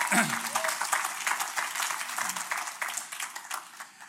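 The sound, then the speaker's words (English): A church audience applauds for the Lord with dense, steady hand clapping that holds fairly loud before gradually tapering off, with a few voices audible underneath. “Give the Lord a hand clap on.”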